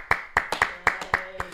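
Clapping from an audience: about seven sharp, bright claps in a steady, fairly quick rhythm, evenly spaced and moderately loud, with no voices over them.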